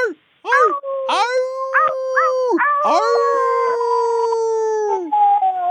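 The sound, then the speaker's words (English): Several human voices howl together in imitation of a wolf pack, long sustained wavering tones rising and overlapping, loud, with a few short yips between the howls. “Wait, can we howl together? Because wolves have to howl in a pack, right?”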